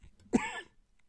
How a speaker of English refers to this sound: Oh, don't cough again. No one wants to listen to this.